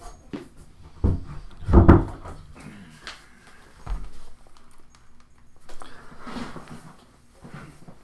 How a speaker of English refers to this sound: Yeah, let me shut the door.